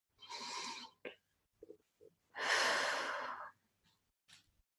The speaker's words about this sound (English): Take a deep breath in, expanding the belly out.